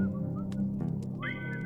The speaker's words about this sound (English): The camera pans out as the aged carver continues to whistle.